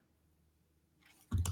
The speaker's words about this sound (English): I'm clicking in the wrong places.